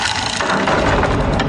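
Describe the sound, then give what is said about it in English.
A heavy medieval-style wooden door from Medieval Installers creaks open in one long, loud, grinding groan, rough and low-pitched with a raspy texture throughout, and no voices. “Ah, my new door from Medieval Installers finally came.”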